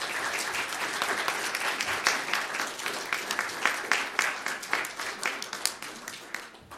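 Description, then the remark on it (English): A crowd applauds steadily for about seven seconds for young people being recognized, many hands clapping in a dense, bright patter with a few sharper individual claps standing out toward the end. “Can we get a round of applause for young people?”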